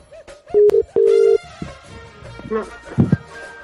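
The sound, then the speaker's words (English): A telephone ringback tone of an unanswered call sounds twice in quick succession, two steady, clear electronic purrs, followed by busier background sound that may include voices. “There's no answer on her fucking phone.”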